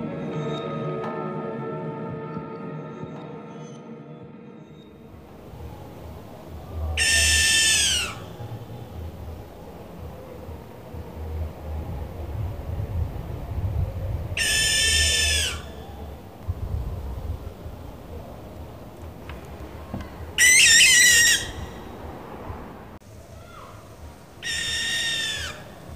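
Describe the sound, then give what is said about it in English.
Four harsh, drawn-out screeching calls of a barn owl ring out at intervals of several seconds over a quiet night background, each rasping shriek lasting about a second or two. “So now we've heard a barn owl, let's find out a bit more about them.”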